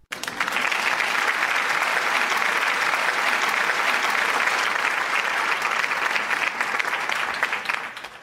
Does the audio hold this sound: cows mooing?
no